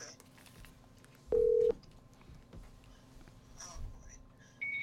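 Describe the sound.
A short, loud electronic phone tone sounds once near the start as a call is placed from a doctor's phone, and a higher beep follows at the very end, over a quiet, noisy background with faint indistinct voices.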